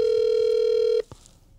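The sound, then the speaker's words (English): A phone line tone as a man's phone is rung again, one steady electronic hum that holds for about a second and then cuts off abruptly, followed by a faint click. No voices. “I'm going to ring his phone again. Try him one more time.”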